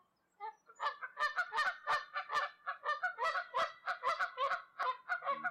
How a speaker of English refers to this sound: As for the Canada geese, here's what they had to say.